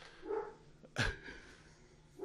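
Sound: dog barking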